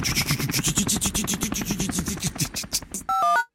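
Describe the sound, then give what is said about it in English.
A helicopter, the 'Spy in the Sky', its blades chopping in a fast, steady, loud rhythm for about three seconds, then cut to a brief bright sequence of electronic tones. No one speaks. “The Spy in the Sky.”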